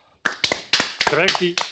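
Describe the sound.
A short burst of applause: a handful of sharp, irregular handclaps mixed with voices calling out over them, fairly loud, lasting under two seconds.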